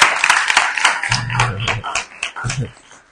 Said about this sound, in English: Who received a prize in SHS? If you received a prize in SHS, let me see her. What subject? Math. Which one? Both of them. Hey. Let's clap for her. Let's clap for her.